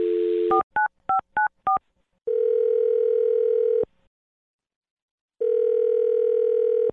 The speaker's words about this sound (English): All right, here we go. I'm going to dial the phone number.